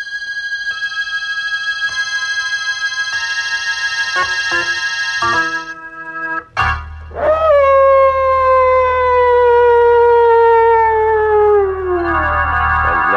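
dogs howling

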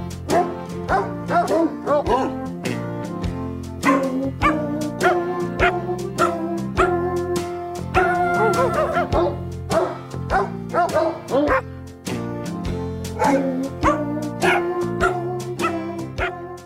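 dogs barking

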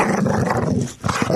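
puppy growling

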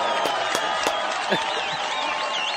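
studio audience applause

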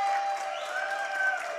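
audience crowd cheering

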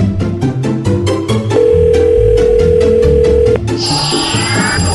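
telephone call ringing

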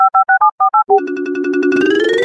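phone dial tone

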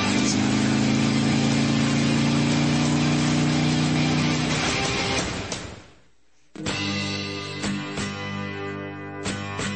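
motorcycle engine revving

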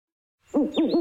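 owl hooting

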